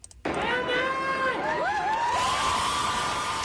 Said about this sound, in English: Adnan Syed supporters cheering him on as he walked out of a Baltimore court as a free man yesterday.